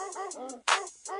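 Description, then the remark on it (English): A dog barks several times in quick succession, fairly loud, one bark coming out harsher and noisier than the rest, with no talking. “Oh, you hear that barking? It's getting closer.”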